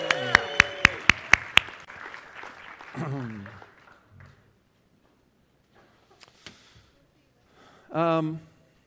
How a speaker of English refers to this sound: Thank you, drill leaders. We appreciate you. A smattering of applause for the drill group leaders. Drill group leaders, we love you. How about that?